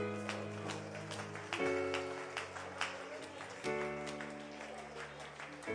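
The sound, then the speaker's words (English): An audience gives a hand clap of praise, clapping and applauding steadily, a dense patter of hand claps over sustained organ-like chords that shift pitch twice, with voices mixed in underneath. “Won't you give him a hand clap of praise in this building right here?”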